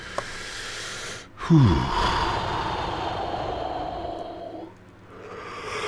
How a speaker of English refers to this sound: Whew. Oh man, there's the yawns. Those yawns start coming in. It's like, oh fuck.